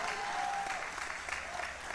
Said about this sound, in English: Somebody give God a hand clap for that.